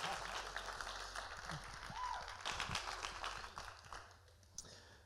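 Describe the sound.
An audience claps steadily for several seconds, a dense, even patter of many hands that fades slightly toward the end, with faint murmuring voices underneath.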